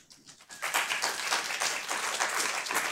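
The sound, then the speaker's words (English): A debate audience votes by applause for the view that the libertarian moment was never about politics: a dense wash of many hands clapping that starts quietly, swells within half a second, and holds at a steady, moderately loud level with no voices. “Now, by applause, how many people believe the libertarian moment was never about politics in the first place?”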